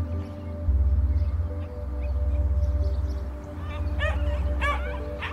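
A handful of quick, high-pitched puppy yips and barks burst out near the end, over a steady low droning hum that runs the whole way through.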